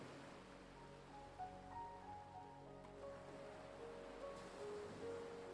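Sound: ocean waves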